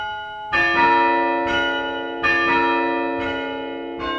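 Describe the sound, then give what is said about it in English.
The hand-played chime at St. Mark's Episcopal Church in Evanston, Chicago area, over 100 years old, played from a wooden chime stand with nine handles, rings slowly: four or five strikes roughly a second apart, each bright tone sustaining and overlapping the next. Loud, with no voices. “This is the chime at St. Mark's Episcopal Church in Evanston.”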